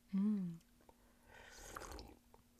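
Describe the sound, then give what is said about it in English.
A short voiced sound, then a noisy, drawn-out slurp of a drink lasting about a second, wet and hissy, with a faint steady hum underneath. “I feel like every time the microphone is on, I'm like trying to like slurp just a little bit more dramatically.”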